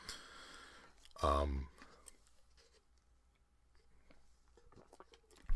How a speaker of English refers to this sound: So, they have a few other lines here as I'm going to sip a little bit of water quickly.